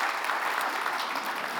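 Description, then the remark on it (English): Steady audience applause for a pastor who organized a trail outing, a dense wash of many hands clapping at an even, sustained level throughout, with no voices standing out. “Let's give him a round of applause for doing that.”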